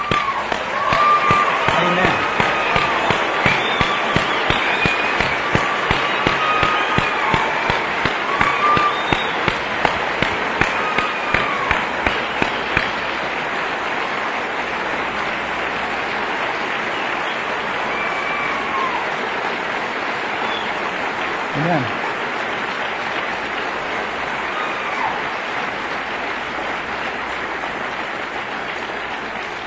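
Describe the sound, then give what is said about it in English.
A large church audience stands and applauds steadily for about half a minute in recognition of a couple's two years of service to the fellowship, the dense clapping surging at first with some sharper, rhythmic claps, then settling into a softer, even patter of applause. “and I wish you'd all stand with me to give them that recognition.”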